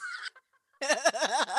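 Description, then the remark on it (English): A voice does a duck impression: a short nasal quack, a pause, then a longer run of harsh, rhythmic quacking calls, fairly loud. “Quack.”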